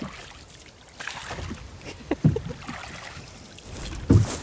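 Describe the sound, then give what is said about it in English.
A small rowing boat being rowed across to an island grinds and crunches as it runs onto the island's shore, with a couple of louder scraping thuds over steady outdoor water and wind noise. “So that was us just crunching towards the edge of the island.”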